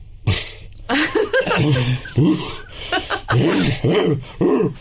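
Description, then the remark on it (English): A person imitates a dog's soft, throaty cough before a bark: a sharp breathy burst followed by a run of short, rough huffs and grunts, fairly loud. “some dogs, they don't go straight into barking. They don't whisper, but they sort of cough.”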